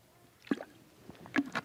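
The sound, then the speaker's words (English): A speaker drinks water: a few soft, wet gulps and swallows, fairly quiet, with short pauses between them and no talking. “Excuse me, let me get some water.”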